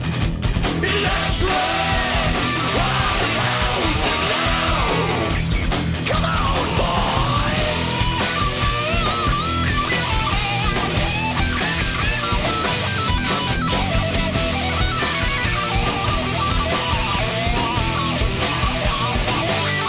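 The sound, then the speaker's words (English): A heavy metal song plays loud and dense throughout, with driving distorted guitars, pounding drums and shouted, yelling vocals filling the whole stretch without a break. “Let's listen to that song.”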